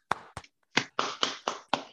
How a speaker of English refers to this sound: the Detroit Lions, they did it. They finally did it. Clap it up.